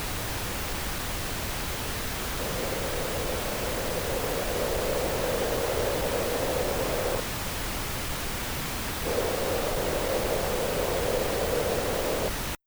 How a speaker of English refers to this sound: Boxy is the one that sounds like a cardboard box.